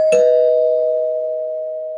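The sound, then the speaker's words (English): A bell is struck once as a spoiler warning, giving a bright metallic ding whose steady tone rings on and fades slowly over the next two seconds, with no voices present. “I'm going to ring the bell anyway because there's people out there.”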